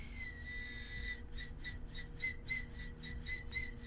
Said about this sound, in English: Does this help airflow whistle? Yes, all the airflows whistle. The flavor gets better as you lower the airflow, but as you lower the airflow, it freaking whistles. I hate that.